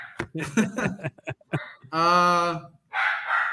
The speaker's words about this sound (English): Sorry, my dog's barking again.